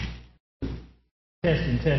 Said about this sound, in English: Testing. Oh, fell down. Okay. I was seeing something seriously powerful there. It knocked the mic down.